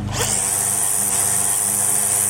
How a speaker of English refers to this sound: The neighbor, who is being dubbed Wedding Crasher Karen, next revs up her weed whacker. So just how loud was it? Just listen.